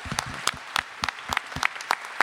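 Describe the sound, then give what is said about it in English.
Applause from an audience for a first-year teacher: a steady patter of sharp, bright hand claps at an uneven rhythm, moderately loud, with no voices over it. “And she works really hard, and it would mean a lot to her if you could give her a hand.”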